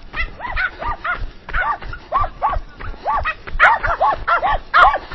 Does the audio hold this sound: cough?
no